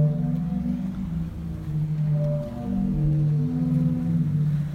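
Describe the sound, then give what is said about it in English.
Low, breathy organ-like tones from sea organ pipes on the waterfront in Zadar, Croatia, swell and overlap in slow, mournful chords as waves push air through them, a steady moaning drone with no voices. “we're in Zadar, where the sea plays a giant harmonica next to the waterfront. Kind of sounds like a whale.”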